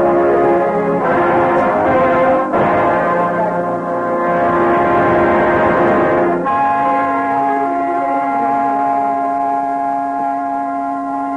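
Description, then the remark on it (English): The Lutine Bell, a large, heavy bell on the floor of Lloyd's, tolls slowly for lost ships: three loud strikes whose deep, ringing tones hang and overlap before fading into a long, humming resonance. No voices are heard. “Lutine Bell on the floor of Lloyd's, solemn recorder of the fate of ships of all nations.”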